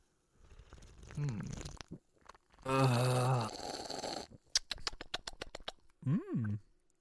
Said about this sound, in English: I'm gonna open it and take a sip. All right. So here we go. Gonna crack into that.